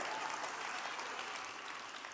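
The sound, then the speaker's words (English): Steady applause from a large audience fills the whole moment, dense overlapping claps at a consistent level with no talking over it. “If you did, you'd be clapping already. You're late with your clap.”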